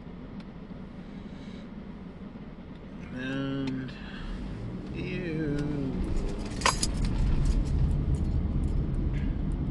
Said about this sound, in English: Oop, car coming.